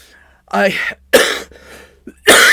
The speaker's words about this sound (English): First thing he did was he kept coughing throughout the entire speech. He kept coughing. This was noticed by the media, and they did comment on it